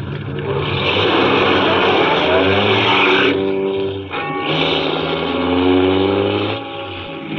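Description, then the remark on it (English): A car engine roars as the vehicle pulls away and speeds up, revving loudly, with a brief dip like a gear change midway before climbing again. “After I got the car back on the road again, I felt like a fool.”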